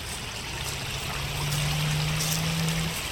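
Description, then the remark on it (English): A steady, continuous rush of flowing water from an underground river running beneath Coventry fills the scene with an even wash of noise, and a faint low hum drones beneath it partway through. “It was then when I realised there was a river running underneath Coventry.”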